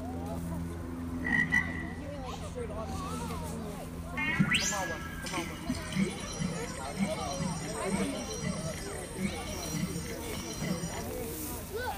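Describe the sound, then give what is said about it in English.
A frog croaks in a steady, repeating rhythm, each low, throaty call coming about once a second at moderate volume, with faint murmuring voices and ambient noise in the background. “Yeah, there's a frog all lit up, and then there's another frog to the right of that that's all stretched out.”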